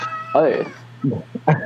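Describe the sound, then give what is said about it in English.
A cat meows several times in quick succession, a long wavering call followed by two shorter ones, over a steady low electrical hum. “The cat probably just fucked everything up.”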